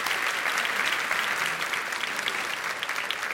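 A large audience claps steadily throughout, a dense, even wash of applause that stays loud and sustained with no voices standing out above it.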